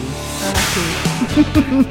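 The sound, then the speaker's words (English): A sudden, sharp sneeze bursts out, a brief breathy explosion of sound, followed by a second softer burst, over a steady tonal background with some faint voice-like sounds. “Bless you.”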